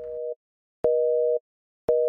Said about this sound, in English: First of all, why the goddamn phone ringing?